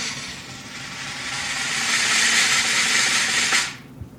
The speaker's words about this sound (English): go ahead and hit the drum roll, and let's see who won.